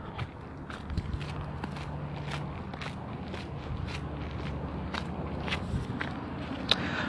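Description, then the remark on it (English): Steady footsteps walking at an even pace outdoors on a dark night, each step a soft crunch, over a quiet, calm background hum with crickets and no talking. “I could hear the crickets and just my footsteps.”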